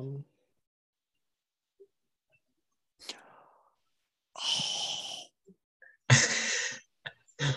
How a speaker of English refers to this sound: An audible gasp from ….